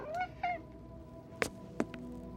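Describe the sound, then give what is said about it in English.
A cat gives two short, fairly soft meows in quick succession, each gliding downward in pitch, followed by a couple of sharp thuds or clicks. “Woody? Meow. Where are you, baby?”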